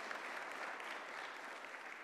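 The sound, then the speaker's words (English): An audience at a church worship service claps steadily for about two seconds during a sermon on Jesus' resurrection, a dense, even wash of many hands with no pauses and no voices rising above it. “You can clap. It's okay.”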